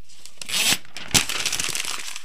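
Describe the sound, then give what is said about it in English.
A sheet of paper is ripped out of a typewriter with a quick rasping rip, followed by a sharp snap and a stretch of crackling crumpling as it is balled up. No one speaks. “When you messed up, you either backed up a space and typed the correct letter over the wrong one, or you ripped out the entire sheet and started over fresh.”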